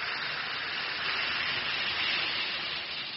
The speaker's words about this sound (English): Just drop one or two Alka-Seltzer tablets into a glass of water like this. Listen to it fizz.